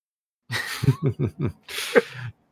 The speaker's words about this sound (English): And I just cough in the background.